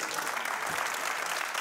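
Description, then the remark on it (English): A crowd applauds in a steady, dense wash of clapping that holds an even loudness from start to finish, with no voices rising above it. “I don't know why the hell y'all clapping at that, okay?”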